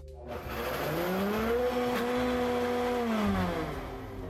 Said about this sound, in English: And now I'm going to add in 1/2 cup of my reserved pasta cooking water. And that goes. Now let's blitz it all up.